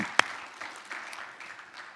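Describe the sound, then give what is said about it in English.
A crowd claps together in a dense, steady patter of many hands, opening with one sharp, loud clap before settling into a broad, even wash of applause with no voices. “Can you agree with me by applauding?”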